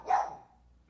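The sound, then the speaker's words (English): A dog gives one short, sharp bark at Mango that quickly fades into quiet. It is not loud, and no one speaks. “Is he barking at Mango?”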